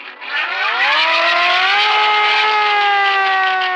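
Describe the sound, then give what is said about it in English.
A siren winds up from a low pitch, rising steadily over the first couple of seconds before holding a loud, sustained wail with no voices present. “Just go to the siren.”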